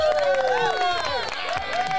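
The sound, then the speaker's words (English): An audience claps and cheers together, steady dense applause mixed with high, rising and falling whoops and shouts that stay loud for the full couple of seconds. “Let's get some clapping going.”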